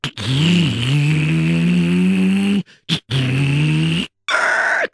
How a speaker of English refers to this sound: And the way that car stopped sure woke up the guy at the reservoir.